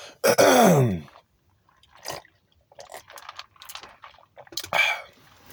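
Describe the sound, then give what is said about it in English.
A loud, harsh throat-clearing burst, followed by quieter slurping sips of a drink and small mouth and swallowing noises, then another short rough clearing sound near the end. No speech. “Damn, my throat. Hold up. Pause. Let me get a sip of this beverage.”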